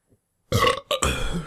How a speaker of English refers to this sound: Lovely. That's it. You burp in the mic, yes.